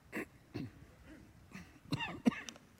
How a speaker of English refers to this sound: By the way, I feel great. I just have this nagging cough that's driving me nuts.